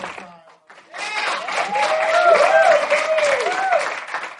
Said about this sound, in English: Actually, give yourselves a round of applause. I just want the listeners to hear how few people in here. If you could just clap.